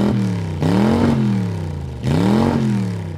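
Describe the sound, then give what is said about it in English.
A car engine starts back up, as an automatic stop-start system does after a standstill in traffic, and revs twice in quick succession, each burst rising in pitch before settling back to a steady, fairly loud idle. “I'm going, we're driving, and next thing you know, the car has to start back up again.”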